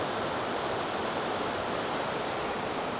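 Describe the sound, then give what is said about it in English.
Steady, dense hiss of rain falling through yew tree branches, an even wash of drips and patter with no pauses and no voices, as rainwater drips from the branches onto the listener's head beneath the yew's canopy, beside the headstones of old graves. “The yew tree is dripping drops of water from the rain on my head.”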